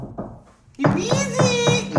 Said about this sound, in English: Oh, is it because we knocked? Yep. That was like a delayed reaction. It was like 30 seconds.